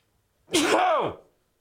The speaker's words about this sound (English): Hang on, I got to sneeze.